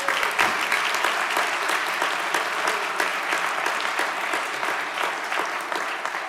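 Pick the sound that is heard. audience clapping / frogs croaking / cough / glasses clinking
audience clapping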